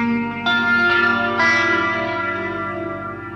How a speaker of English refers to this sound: fooling around the guitar and he plays a little four note phrase.